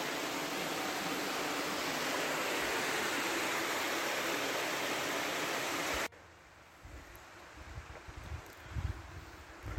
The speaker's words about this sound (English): Let me hear water running in here.